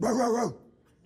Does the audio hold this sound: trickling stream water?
no